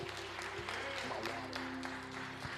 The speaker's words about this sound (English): Come on, clap your hands for our leaders.